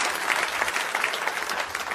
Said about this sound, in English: Amen. I'll wait. You can clap for the Lord. That's fine. That's okay.